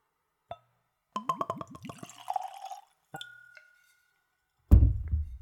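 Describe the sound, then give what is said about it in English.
Clear, undiluted, unchilled whiskey glugs straight from the bottle into a clean Glencairn nosing glass in a quick burst of bubbly pouring, followed by a faint glassy ring and a dull thud as something is set down. “And I'm using a clean Glencairn glass for that.”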